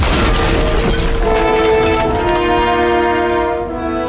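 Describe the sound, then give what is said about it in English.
A massive boulder crashes down in a loud, rumbling burst of noise, then a sustained ringing tone lingers and slowly fades. No one speaks. “But for once, the Major's leg is spared, and somehow, both men manage to stagger out of the way of that massive wrecking ball right before it crashes down on the spot where they just stood.”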